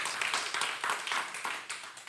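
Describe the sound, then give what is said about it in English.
A church audience claps their hands for Jesus during a sermon, a dense wash of crisp, bright claps with a loosely steady rhythm and no voices over it. “You can clap your hands for that.”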